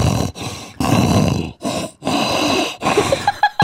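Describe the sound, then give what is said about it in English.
A person imitates a wolf howl, the voice rough and gravelly, coming in four loud, breathy bursts with short pauses between, ending in a few higher, strained yelps. “Okay, happy howling.”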